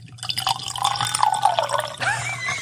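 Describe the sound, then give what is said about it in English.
Bourbon pours into a glass in one steady, splashing stream of about two seconds, its gurgle rising slightly in pitch as the glass fills, with a low hum underneath and no talking. “Is that a good pour or what?”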